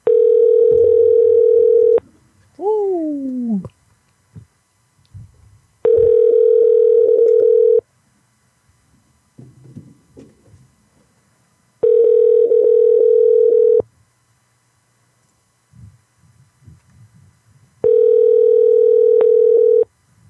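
A telephone line tone on an outgoing call: four steady, loud two-second tones separated by longer silent gaps, with a brief sliding whine after the first and faint low rustling between.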